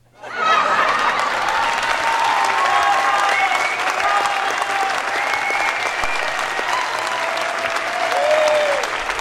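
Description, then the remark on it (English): Sustained audience applause, dense and steady from start to finish with a few faint voices and cheers mixed into the clapping. “Right, they like that. Keep the applause going.”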